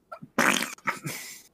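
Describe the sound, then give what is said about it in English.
A loud fart sound in two sputtering, noisy bursts, the first a harsh blast and the second longer and trailing off, with no talking over it. “Hey, little that's mama, you fart with that thing.”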